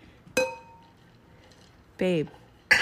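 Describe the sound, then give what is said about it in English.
A single bright clink of glasses in a Valentine's Day toast rings out clearly and fades over about half a second; a brief voice and another sharp, short knock follow near the end. “Cheers.”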